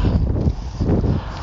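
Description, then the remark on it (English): A strong gust of wind buffets the microphone, producing a loud, low rumbling roar that surges in two waves over a second and a half, with no voices. “A big gust of wind, so we'll take a breath.”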